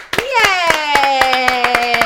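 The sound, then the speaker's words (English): Hands clap in a steady, even rhythm, about nine sharp claps in two seconds, over a sustained, held sung note that slides up at the start and then holds steady. “Let's get around with the applause.”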